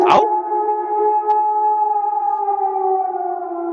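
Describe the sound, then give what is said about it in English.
Human voices imitate a wolf pack howling, holding one long, loud, steady wail that stays near one pitch and swells slightly. A brief sharp burst opens it. “You ready for your wolf pack howl? Here it goes.”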